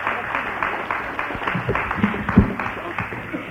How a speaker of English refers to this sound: Just have to clap your hands.